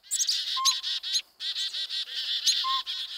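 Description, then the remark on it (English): Two short, clear hoots of a pint-sized northern pygmy owl in a northwest treetop on a winter morning, about two seconds apart, nearly buried beneath a loud, continuous chorus of a dozen or more small birds (chickadees, kinglets, nuthatches, a downy woodpecker) chirping and scolding the owl. “A pint-sized northern pygmy owl, not much bigger than a pine cone, hoots from a northwest treetop on a winter morning.”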